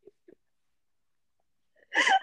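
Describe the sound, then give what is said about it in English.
A voice puts on a short, whiny fake sob near the end, preceded by two tiny soft vocal catches. It is brief, with silence between the sounds. “crying.”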